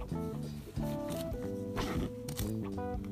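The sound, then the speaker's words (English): Several quick papery rustles as a book page is turned sweep through over steady tonal background music, moderately loud, with no talking. “Turning the page.”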